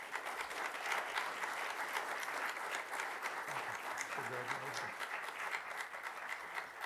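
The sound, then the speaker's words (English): Steady, dense applause from an audience for a senior student whose awards and future plans have just been read out, a continuous wash of many hands clapping at an even level for several seconds, with a brief low voice murmuring underneath partway through. “Y'all give him another round of applause.”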